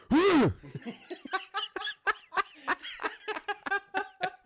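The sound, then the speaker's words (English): A loud, harsh throat clearing right up against the microphone, a single strained burst that gives way to a string of quick, rhythmic throaty pulses, almost like a gobbling chuckle. “Motherfucker told me to clear my throat away from the mic before shit.”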